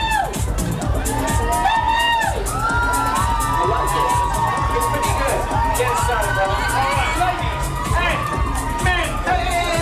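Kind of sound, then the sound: crowd, audience cheering and whooping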